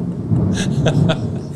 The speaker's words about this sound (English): Oh, God, there's lightning. And there's the thunder.